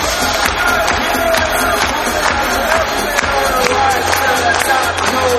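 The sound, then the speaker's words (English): A large crowd at Star Wars Celebration claps together on cue in quick paired double claps, the sharp unison claps repeating over a steady roar of cheering and shouting voices. “Double clap.”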